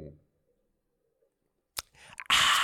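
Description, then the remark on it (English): After a quiet pause, a sharp click and some wet rustling lead into a loud, airy slurp of a drink that hisses on to the end. “One more slurp for the ASMR.”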